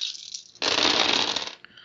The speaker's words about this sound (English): So I need a lot more dice than I'm trying to roll right now to cast this, because you get a lot more dice than that.